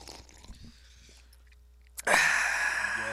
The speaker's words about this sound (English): Do you hear the effervescence?